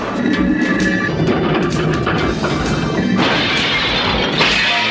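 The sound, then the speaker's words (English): A big spinning wheel from a game smashes into slot machines with a loud, sustained crash of breaking and clattering debris, dense throughout, brightening into a fresh burst of shattering near the end. “This big spinning wheel off one of the games comes flying off”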